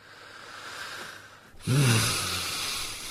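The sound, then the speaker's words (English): Quiet hiss at first, then a sudden, loud nasal snort around the middle with a low rumbling tone, followed by a steady, noisy rush of breath through the nose. “Haven't I got noisy nostrils?”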